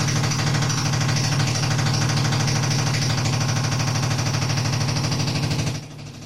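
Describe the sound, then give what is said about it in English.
A jackhammer outside a studio window, run by a private plumbing contractor on the property, pounds in a rapid, steady rattle for several seconds, loud with a strong low thump, before cutting off abruptly near the end. No one speaks. “That is a jackhammer outside the window of the studio.”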